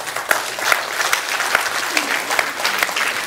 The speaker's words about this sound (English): Amen. Give the Lord a clap this morning.